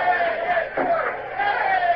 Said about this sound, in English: What are those idiots cheering about? From the noise they're making, you'd think they'd won Trafalgar.